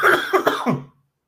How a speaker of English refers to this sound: You tried to mute then, sir? Yeah, coughed and we heard it anyway.